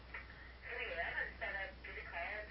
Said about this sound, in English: Oh, here, I just got the phone rang and the answering machine just picked it up.